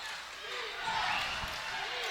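A basketball is dribbled up top during a game between Moanalua and Radford at Moanalua, in a few dull, low thumps, half buried under the steady roar of a loud, cheering, almost capacity crowd.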